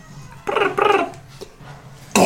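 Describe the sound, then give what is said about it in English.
A person imitates bird sounds while voicing a character named Reggie, with two short, warbling voiced chirps, followed by a few softer breathy noises and a sudden loud burst of noise at the end. “He speaks celestial, but can you make bird sounds?”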